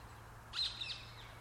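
A short burst of high, thin bird chirps rises briefly over a quiet background with a low steady hum, the calls soft; recorded at around three o'clock inside a city ring road.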